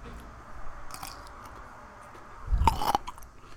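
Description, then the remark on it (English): A wet crunch as someone bites into a pickle, followed by brief chewing; a couple of faint crackly sounds come earlier, with no talking. “This pickle is so fucking ugly.”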